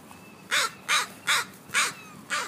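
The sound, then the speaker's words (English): Five harsh, raspy caws from crows ring out in a steady rhythm, evenly spaced about every second, loud, over a faint background hum. “It's the Crow Brothers”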